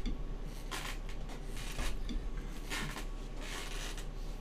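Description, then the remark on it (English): A chair creaks and scrapes in several short, rough bursts spread unevenly across a few seconds, with faint rustling between them and no one speaking. “That is a really loud chair.”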